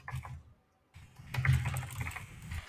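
Rapid, clattering keystrokes from a loud mechanical keyboard in two bursts separated by a brief pause, the second burst longer and busier.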